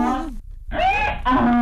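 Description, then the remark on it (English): A donkey bray sound effect for the Donkey of the Day segment, in two loud, harsh, harmonic bursts separated by a short gap, the pitch swooping up and down between wheezy inhaled and honking exhaled notes. “Ooh, you are the donkey of the day. Yee-haw.”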